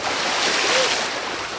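A loud rush of splashing water as someone plunges into a backyard swimming pool during a barbecue, churning steadily for a moment before easing off slightly. No voices are heard.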